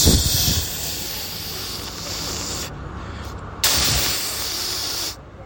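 Harsh static hiss rushes in two long bursts separated by a short break, bright and steady, with a soft thump as each burst begins. No one speaks.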